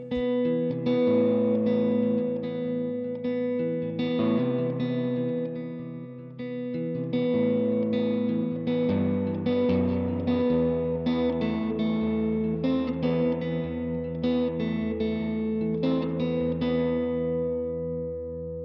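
Electric guitar chords and single notes from an American Stratocaster, played through a reverb pedal into an AC30 head and an AC15-style open-back 1x12 cabinet, ring out through a wide, splashy reverb, each strum trailing a washy tail; played steadily and fairly loud, with no voices.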